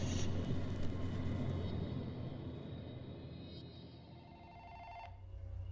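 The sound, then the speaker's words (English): A telephone rings steadily over a low, rumbling background hum, the ringing fairly loud and continuous for several seconds with no voices. “The sound of a phone ringing.”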